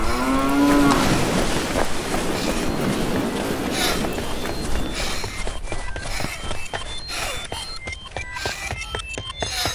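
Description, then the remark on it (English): A cow lets out a loud moo at the start. A broad rumbling noise follows, giving way to a quick run of sharp clattering taps. “I see cow, I better run!”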